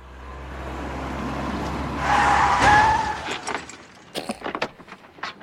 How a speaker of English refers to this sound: You did? Look what I did. What, are you insane? You rammed into me. This is a brand new car. Well, this is a classic car.